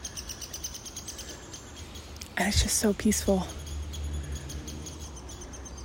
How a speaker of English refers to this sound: I think the birds are mad that I'm here.